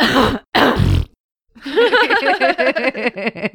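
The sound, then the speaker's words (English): A voice makes a short, low blurting imitation of a fart alongside a quick cough-like burst, followed after a pause by laughter and chuckling. “So you're like, just like, wait, you do the fart sound. I'll do the cough.”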